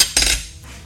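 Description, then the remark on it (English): A sharp clatter of dishes and cutlery knocking against a glass tabletop, one bright burst of clinks followed by a fading ringing tail, with no voices. “We need to find something to put on this glass top. It's very noisy.”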